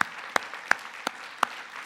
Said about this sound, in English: But please oblige me and allow me to thank you ladies and gentlemen that have served and all those that are part of that, veterans. And so can we do that? Can we just give them applause?